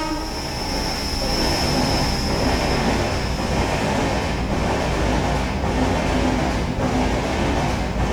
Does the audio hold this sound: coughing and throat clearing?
no